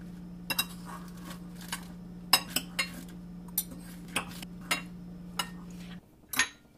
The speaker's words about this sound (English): All right, I've got my cutlery here, just a fork and knife so I can cut through this lettuce.